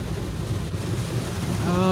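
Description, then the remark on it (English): An automatic conveyor-belt brushless car wash: a steady rush of spraying water over a low mechanical rumble, with the cloth strips flopping onto the car and a humming motor tone rising in near the end. No voices. “No, it's an automatic car wash.”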